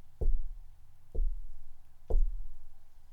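Three slow, evenly spaced knocks on a front door, each a dull, hollow thud with a low, booming body that fades quickly before the next. No voices accompany them.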